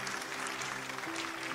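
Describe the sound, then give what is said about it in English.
An audience applauds in a dense, steady wash of clapping that holds an even level throughout, with a held low musical chord sounding underneath and shifting partway through. “Yeah, we can give them a round of applause.”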